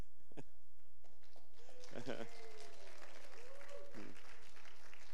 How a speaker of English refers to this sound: Hey, don't clap too hard. I might feel inferior now.